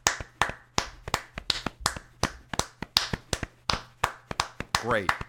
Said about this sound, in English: Great. I apologize. My clapping was muted because I'm wearing gloves. It's still clapping. And I like that we had two. We didn't even plan this. It's a raw feed. But we had two distinct clapping sounds.